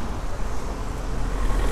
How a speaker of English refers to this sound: oh, car's going. Right, we're just going to cross this road and we will continue.